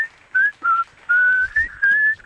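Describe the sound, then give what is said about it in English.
A person whistles the whistle break of a song, a short tune of several clear sustained notes in separate phrases with brief gaps between them, and no one talking over it. “And how does the whistle break go in that one”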